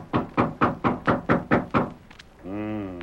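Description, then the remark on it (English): Seven quick, evenly spaced, firm knocks on York's door, followed by a short pause and then a brief sustained humming tone. “I'll knock to let him know we're here.”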